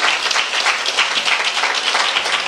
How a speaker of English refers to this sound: And every believer who rejoices with heaven, somebody give God a hand clap of praise for that saved soul.